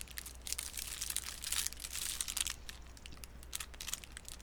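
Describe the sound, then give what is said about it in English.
Thick plastic wrapper crinkling in steady, irregular bursts of crackly rustling for several seconds, fairly quiet, with no voices. “It's not foily, it's a Okay. plasticky, but it's Okay. like a thicker kind of plastic, you know?”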